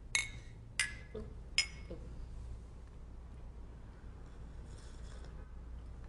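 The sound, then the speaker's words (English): Mugs of hot tea clink together three times in quick succession in a toast, sharp, each ringing briefly before fading over a low steady hum. “I feel like that's our obligatory podcast noise now. We got the clink and we got the deep breath.”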